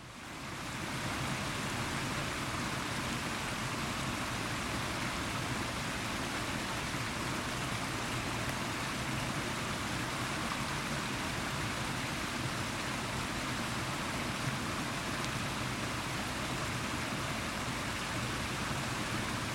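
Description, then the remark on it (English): A steady, even hiss of light rain falling outdoors in the gardens at Newstead Abbey in Nottinghamshire, continuous and unbroken for the whole stretch, with a soft, fine-grained patter and no voices. “are out in the gardens at Newstead Abbey over in Nottinghamshire, and it's a rainy day, light rain.”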